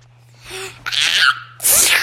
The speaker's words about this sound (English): Ooh, a very legit sneeze. Very legit.